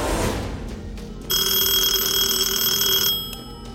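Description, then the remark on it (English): A telephone rings once at 8:30 a.m., a bright sustained electronic trill lasting about two seconds, loud, with no one speaking; the call is from an employee of Rouse Automotive. “8:30 a.m., the phone rings.”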